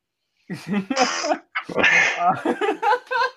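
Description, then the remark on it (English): A baby sneezes twice in quick succession, each sharp, breathy burst preceded by a small high-pitched intake and followed by soft vocal noises, fairly loud. “I still got the just the funny trends and the sneezing baby.”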